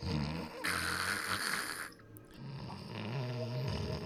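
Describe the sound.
A person imitates someone snoring gently after collapsing on the floor, with two long, raspy breaths, a brief pause between them, with no talking.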